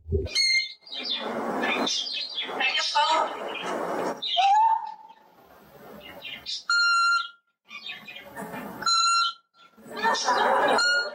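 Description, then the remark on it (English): A parrot named Inkisi mimics an old-fashioned answering machine, giving steady electronic-sounding beeps, one longer and another shorter, between bursts of loud, raspy squawks and chatter. “And he also makes noises that sound remarkably like an old-fashioned answering machine beeping.”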